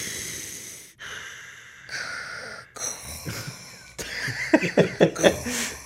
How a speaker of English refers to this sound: Vader's breathing, iconic breathing.